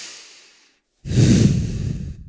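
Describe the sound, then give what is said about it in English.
Deep breathing during a breath-work exercise of inhaling, humming and swallowing: a soft, airy breath trails off into a brief silence, then a loud, forceful breath follows with a rough, rumbling low end, lasting over a second. No one speaks. “So speaking of which, taking a few exhales here. You can do it with me. Inhale, hum, swallow.”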